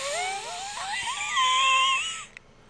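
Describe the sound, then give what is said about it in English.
A voice imitates a strained, stifled scream: a thin, wheezy, high-pitched squeal that wavers up and down for about two seconds before cutting off, with no words spoken. “When you're trying to scream, though, and get help, and you're just like...”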